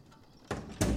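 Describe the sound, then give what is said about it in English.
A door is pushed shut: a broad rushing scrape followed a moment later by a louder, fuller thud as it closes, with no voices. “Close the door.”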